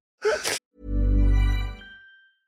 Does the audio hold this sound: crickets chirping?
no